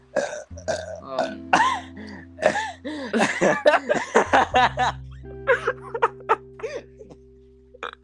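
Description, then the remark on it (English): A rapid flurry of loud burps, one after another in quick succession, with a few snickers and light laughter mixed in between them. “I attacked you. The flurry of burps.”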